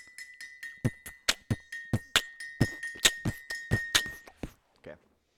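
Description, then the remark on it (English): Glasses of horchata clink together in a toast over and over in a quick, uneven series of bright taps, fairly loud, with a steady ringing tone lingering underneath before the strikes stop. “All right, let's drink some horchata. Horchata, all right. Cinnamon milk. Now, cheers.”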